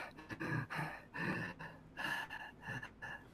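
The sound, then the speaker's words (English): A voice imitates a creature's heavy breathing: several rhythmic, rasping breaths in and out, fairly loud, with short pauses between each gasp. “And everyone can just start hearing a little heavier. Like, a heavy breath.”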